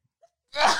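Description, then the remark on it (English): A sudden, forceful sneeze bursts out after a brief quiet pause, sharp and breathy, with no talking around it. “Bless you.”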